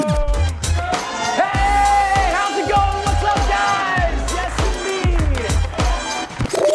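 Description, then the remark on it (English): An audience at a New Year's show cheers loudly and continuously as Mr. Jason Outlaw is introduced, with whoops and shouts, over a steady thumping bass beat that runs underneath the whole time. “And now, ladies and gentlemen, let's give it up for the man who still suffers from affluenza, Mr.”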